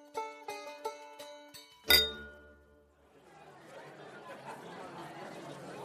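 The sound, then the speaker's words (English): Several bright glass clinks ring out in quick succession, ending in a louder crash-like clink, then a steady hum of political chatter in a Westminster pub follows, with many overlapping raised voices. “Clinking glasses, raised voices, political chatter, vastly overpriced lager served with vastly overpriced bags of Walker's crisps, an open side door onto an open side street rammed with parliamentary aides and researchers and journalists and spads,”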